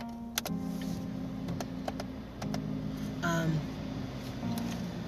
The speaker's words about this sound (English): I'm starting my car back up. Y'all may hear my AC go on. Y'all, I'm hot.